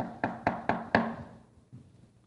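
Four quick, evenly spaced knocks rap on a door, firm, each with a short woody resonance, followed by near silence.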